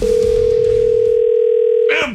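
A telephone ringback tone on an outgoing call from the 95.7 Cruise FM radio studio to a wrestler at Monster Pro Wrestling: one loud, steady electronic ring lasting nearly two seconds, then cut off abruptly with a brief click as the line picks up.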